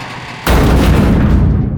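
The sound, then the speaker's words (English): A sudden, heavy crash of a creature's body slamming into a garage door, followed by a loud, sustained booming rattle that fills the rest of the moment. No voices are heard. “Three times more, the thing smashed against the barrier.”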